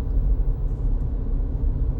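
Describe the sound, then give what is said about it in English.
Steady low road rumble from inside a moving car, a continuous dense drone filling the low end with no voices, constant and fairly loud throughout. “Or the full in-car experience here.”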